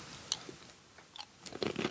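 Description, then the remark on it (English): A woman chews crunchy Lucky Charms cereal wetly, with sharp crisp crunches scattered irregularly through the bites; quiet overall, no talking. “Quick 4 seconds of eating sounds for anyone looking for a ringtone that makes people throw up in public.”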